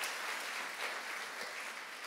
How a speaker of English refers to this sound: Thank you. Round of applause